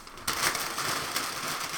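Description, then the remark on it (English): Loud, continuous crinkling of food packaging starts abruptly after a brief quiet moment, a dense crackly rustle with sharp bright bursts that keeps going to the end with no voices. “This crinkling is going to be very loud on here.”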